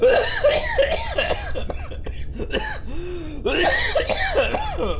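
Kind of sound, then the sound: human body sound, coughing and spluttering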